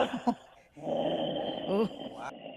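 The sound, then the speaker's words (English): A person voices a low, rumbling growl in imitation of an animal, sustained for about two seconds after a brief breathy start, moderately loud with no words. “That's already a very good growl.”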